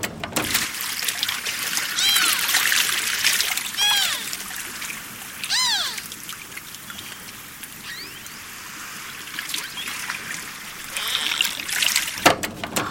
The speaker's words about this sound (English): It's a tool that allows scientists and curious environmentalists like myself to hear what's going on underneath the water. That means beluga songs, clicks, and chirps. Let's take a listen and see if we can hear anything.